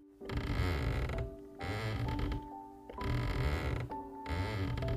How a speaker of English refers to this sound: I started hearing the creaking from the hallway behind me. It was dark, and the creaking got quicker and more aggressive.